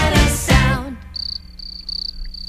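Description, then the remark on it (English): Crickets chirp in pulsing bursts, a steady high-pitched trill that rises and falls in regular groups, preceded by a brief bird call at the start, with low background hum. “And then we have crickets.”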